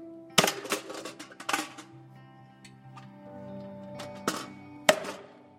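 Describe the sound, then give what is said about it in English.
A sledgehammer strikes a metal car grill about four times at uneven intervals, swung by a man standing on the car's hood in a driveway to dent the grill back into place; each loud clang leaves a ringing metallic hum that lingers between blows. No one speaks. “I looked out into the driveway, and there's my dad standing on top of the hood of the car with a sledgehammer trying to dent the grill of the car back into place.”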